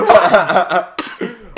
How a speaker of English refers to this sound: Fucking delayed dab cough.